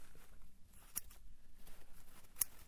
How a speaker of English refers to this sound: I'll just use these scissors and I'll cut the fabric.